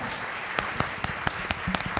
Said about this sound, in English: Can we give them a round of applause, because that was so impressive?